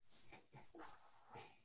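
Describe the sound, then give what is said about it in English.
A dog named Lolo lets out soft, muffled barks and whimpers in her sleep, several short breathy yips in a row, quiet, with no talking. “Lolo is barking in her sleep.”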